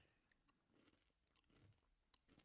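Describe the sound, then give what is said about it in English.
Crunchy chewing of a granola bar, with a few sharp bites and steady munching over a couple of seconds, soft overall and with no talking. “What are you chewing on? What are you snacking on right now?”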